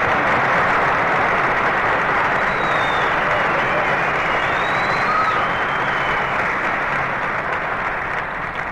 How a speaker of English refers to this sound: Dennis, stop applauding.